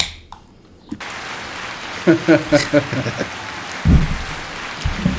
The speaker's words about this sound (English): Thank you. We are growing. Yes. Listen to that crowd.